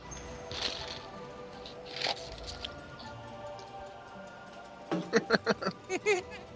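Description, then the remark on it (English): Wet crunching of ice cubes being bitten in someone's mouth: a couple of isolated cracks early on, then a quick burst of about six crunches near the end. “I'm sucking on ice cubes.”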